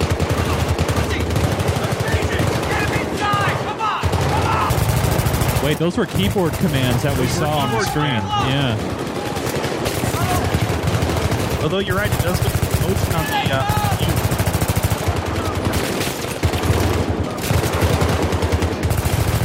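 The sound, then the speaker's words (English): Video game gunfire rattles in rapid, sustained bursts, loud and nearly continuous throughout, while people talk over the shooting. “Now, what happens if you shoot your teammates? They shoot back, I hope.”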